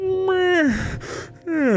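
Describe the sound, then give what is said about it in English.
A voice imitates a drawn-out yawn: a voiced tone sliding downward into a breathy exhale, then a short falling vocal sigh at the end, clear. “As he's walking with you, he gives that a little audible yawn where he's like”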